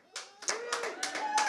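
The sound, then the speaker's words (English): A crowd claps in scattered bursts while voices whoop and cheer over the applause. The sound swells and stays fairly loud throughout the short stretch. “You're supposed to cheer if this is your fear.”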